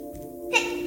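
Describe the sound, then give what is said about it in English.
A small child's sneeze, a sudden breathy burst about halfway through, followed by a second sharp hiss at the end, over a steady faint humming tone. “Bless you, baby. Bless.”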